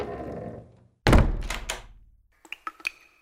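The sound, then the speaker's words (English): A heavy door thuds shut with a deep, booming impact that rings out briefly, followed by a few faint metallic clicks and rattles as it settles. “I grab the door, look behind, wait for the lights to flicker. I see nothing, and run inside.”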